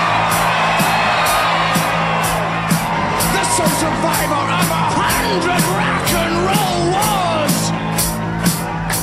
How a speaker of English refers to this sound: I am the victor, and I love to hear the crowd roar.